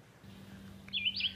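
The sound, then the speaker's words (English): Birds sing in a short burst of high, warbling chirps that start partway through, over a steady low hum. No one speaks. “start this one off with just voices, child and bird voices, and then I'll bring in the rest of the choir.”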